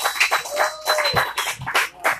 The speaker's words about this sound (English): All right. And I hype him up. Come on now. Big round of applause.